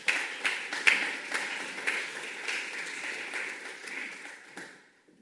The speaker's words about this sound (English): First of all, I'm going to give Philip his book, so we can give Philip a round of applause.